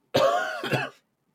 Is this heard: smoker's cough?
yes